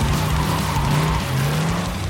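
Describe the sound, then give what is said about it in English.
A car is started with the key in the ignition and its engine roars at high revs while tires squeal and screech as it peels away, loud, with a steady, rising whine throughout and no voices. “And he put the key in ignition and started and peeled off.”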